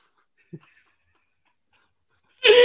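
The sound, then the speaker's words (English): After near silence and a faint low blip, a person abruptly lets out a short, loud, raspy growl, imitating an animal, cut off at the end. “just did a growl”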